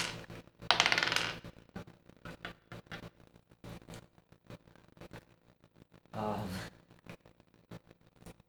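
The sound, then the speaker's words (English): Dice clatter across a hard tabletop in two separate rolls for an opposed athletics check in a game, each a short, bright rattle of tumbling clicks, with quieter taps and faint shuffling in between. “You can tell me just what the dice rolls.”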